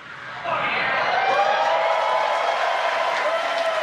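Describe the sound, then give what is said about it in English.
A roomful of people bursts into sustained clapping and cheering as a Falcon 9 rocket lands on a drone ship off the coast of Florida, rising quickly and holding steady at a loud, dense roar with excited shouts mixed in throughout. “And as you can see on your screen, and you can hear by the clapping and cheering behind me, Falcon 9 has landed on our drone ship just with the instructions, parked off the coast of Florida.”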